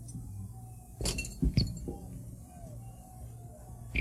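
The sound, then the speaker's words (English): A glass bottle that was thrown at the speaker's head clinks a few times in quick succession, bright ringing knocks bunched together near the start, then fading into a low, steady background hum with no one speaking. “thank you very much to the person who threw this glass bottle at my head and nearly killed me, but you missed again, so you have to keep trying next week.”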